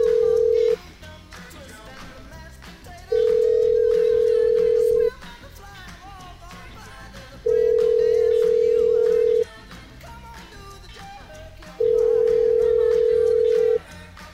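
A telephone ringback tone sounds four times as a cell phone is called, each steady ring lasting about two seconds with even pauses between, loud and clear over a busy, music-like background.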